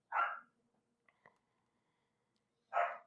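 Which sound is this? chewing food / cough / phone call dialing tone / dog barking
dog barking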